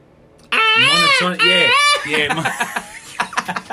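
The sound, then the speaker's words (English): A voice imitates a repetitive, monotonous bird call with a run of wavering, whooping notes, loud, then breaks into chuckling talk. “You don't like any kind of bird noise? But I that's the thing. I like birds sort of chirping and chittering to each other. I just don't like that.”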